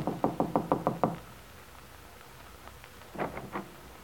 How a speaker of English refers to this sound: Getting out, she walks to the door of Bungalow B and knocks.